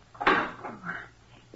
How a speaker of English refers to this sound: Oh, Nick, shut the door, please.